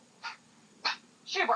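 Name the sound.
dog barking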